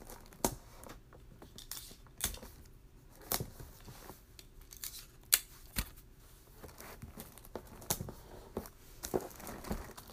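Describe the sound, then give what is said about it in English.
Scissors snip and wrapping paper crinkles in an irregular series of sharp cuts and rustles as the paper is cut and handled, with no one talking. “So I'm gonna go grab this other roll of wrapping paper that I have.”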